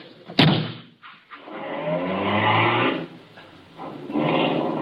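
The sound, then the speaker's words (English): A sharp slam of a car door rings out near the start, then an engine turns over and settles into a steady, rumbling idle that rises and dips over the next few seconds. “Now, come on, get in the car.”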